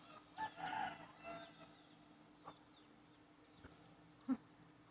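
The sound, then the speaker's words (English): Chickens and chicks clucking softly, mingling with desert pigeons, with scattered short calls and a few sharper chirps over a quiet, steady background hum. “they're mixing with the desert pigeons here, desert chickens. Look, they're about the same size as my chicks.”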